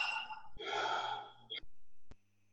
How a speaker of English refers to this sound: I invite us to close our eyes and just to relax. Breathing in through the nose and exhaling through the mouth.